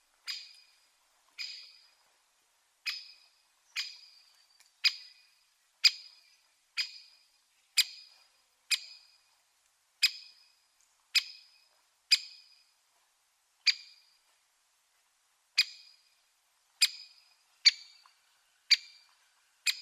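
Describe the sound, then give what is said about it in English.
A great spotted woodpecker repeats its sharp, loud 'chick' contact call about once a second, clear, with short silent gaps and no other sounds or voices. “Their contact call is a loud chick sound, and it always makes me feel a little hungry.”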